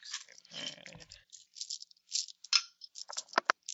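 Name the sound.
dice rattling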